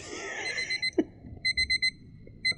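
An egg timer rings in quick repeated electronic beeps, a steady pulsing pattern of short bursts with brief gaps, clear over faint background noise.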